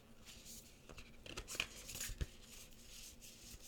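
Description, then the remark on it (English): A deck of oracle cards being shuffled before a card reading, with soft papery rustling and brief sliding, riffling bursts over a few seconds. It's fairly quiet, and no one speaks. “I'm just giving the cards a bit of a shuffle.”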